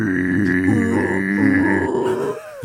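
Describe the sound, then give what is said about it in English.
A person imitates koala bears fighting with a loud, rough, low-pitched growling groan held for over two seconds, wavering in pitch before it abruptly breaks off. “It's sounding like a koala bear fight.”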